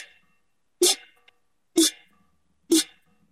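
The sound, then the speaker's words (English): A large tin can is struck three times at an even pace, each sharp clang ringing briefly with a metallic, tonal resonance before fading to silence. “And then I have something, a tin can, a rather large tin can, that has kind of the opposite sound.”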